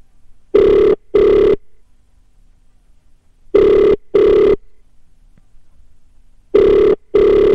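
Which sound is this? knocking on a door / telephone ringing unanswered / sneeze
telephone ringing unanswered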